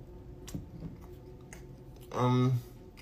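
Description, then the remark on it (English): Chewing food with Melinda's hot sauce, with soft, wet mouth clicks at a slow, irregular pace, then a loud, drawn-out hummed "mmm" of enjoyment near the end. “This hot sauce is amazing, y'all.”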